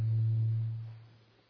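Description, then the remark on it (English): A steady low-pitched hum of speaker-system feedback rings loudly at first, then gradually fades away over about a second and a half, with no voices present. “Is there an echo of this?”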